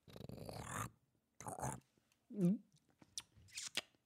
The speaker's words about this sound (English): Oh, let me get one more sip here.